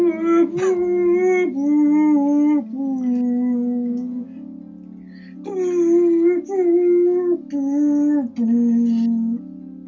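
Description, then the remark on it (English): A human voice croons long, mournful wavering notes that slide and swell like whale song, imitating somber music. The sustained howling tones run steady, with brief breaths between phrases. “I like that what you did, it sounds like somber whale song.”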